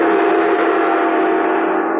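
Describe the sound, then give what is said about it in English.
A great gong rings out in a loud, steady, shimmering drone, its rich metallic tone holding evenly for a couple of seconds without fading, with no voices present. “But the sound of the great gong tells me it's time to close the sealed book once more.”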